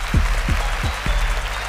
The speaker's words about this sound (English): He does a lot of different things with his voice, and he needs a round of applause for that.